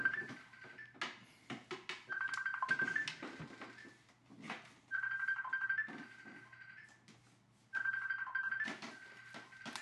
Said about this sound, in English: Sorry, all my phones are going off crazy.